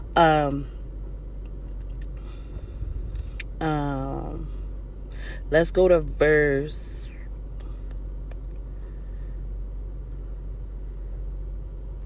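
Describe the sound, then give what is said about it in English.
A car's air conditioning fan, turned up because it is hot inside the car, blows with a steady, constant whoosh over a low rumble, continuing unchanged throughout while a person speaks briefly a few times over it. “I'm turning the air up because it's a little hot in this car.”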